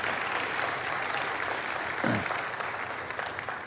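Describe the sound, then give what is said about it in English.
An audience applauds steadily for the speaker's mother on Mother's Day, a dense wash of clapping that holds at an even level throughout with no voices standing out. “You ought to clap for my mom, amen?”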